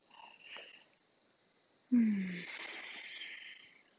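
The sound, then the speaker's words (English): After a little rainstorm, a steady, high-pitched cicada drone runs throughout. Partway in, a single low, falling frog croak sounds, followed by a louder, hissing insect chorus that slowly fades. No one speaks. “Don't know if y'all can hear the cicadas, the frogs.”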